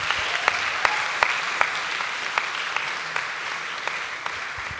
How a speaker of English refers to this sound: Let's give Lucas a big cheer.